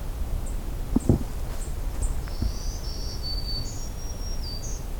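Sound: black-throated green warbler songs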